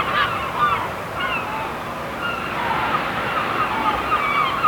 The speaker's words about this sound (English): Now, welcome to the beach. Sun's blazing down, the waves are crashing in, and the seagulls are flying above, dying to get their hands on my fish and chips, but it's not happening.